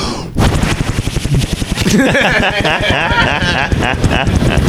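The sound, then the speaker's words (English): A voice imitates a helicopter with a loud, rapid, steady chopping pulse that runs the whole time, growing buzzier and more tonal partway through. “I can do a helicopter really good.”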